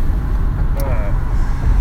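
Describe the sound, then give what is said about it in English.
A car engine starts after its battery was recharged, following lights being left on, and runs with a steady, loud low rumble. A brief sharp click cuts through partway in, and faint voices may sit underneath. “The car seems to be all recharged and starting now, so that's good”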